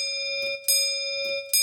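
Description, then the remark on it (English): A clock bell chimes the quarter hour with a steady, ringing tone, struck twice in a slow, even rhythm, each strike adding a bright metallic burst over the lingering hum. “He had no choice but to wait for the tolling hour. A quarter past. Half past.”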